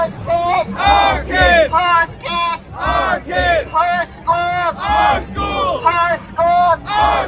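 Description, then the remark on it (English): Counter-protesters, a group of Marxists with a Marxist banner, chant "whose schools, our schools, whose kids, our kids" in unison: loud rhythmic bursts of many voices repeating short phrases in a steady call-and-response cadence. “I did find it interesting, however, that on the counter-protest side, a group of Marxists with their Marxist banner were shouting, whose schools, our schools, whose kids, our kids.”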